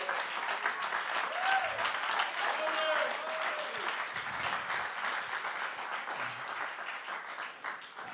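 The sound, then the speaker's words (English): An audience claps hands together unto the Lord in worship, a dense, steady burst of applause that fills the room, with a few voices calling out faintly underneath. “Oh, let's clap our hands right now unto the Lord.”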